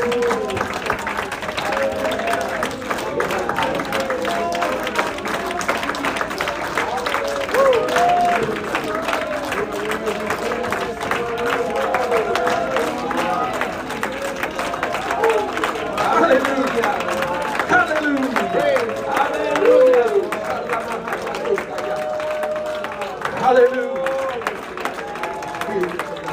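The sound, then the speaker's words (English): An audience gives God a hand clap of praise, clapping steadily and continuously for the whole stretch, a dense, loud patter of many hands, with voices calling out and murmuring beneath and between the claps. “Can we just one more time before we're seated give some God a hand clap of praise before we're done?”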